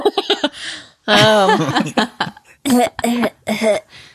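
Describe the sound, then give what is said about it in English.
A voice imitates a baby with a raspy smoker's cough, a few harsh hacking bursts followed by strained, gravelly vocal sounds, fairly loud. “Ever heard a baby with a smoker's cough?”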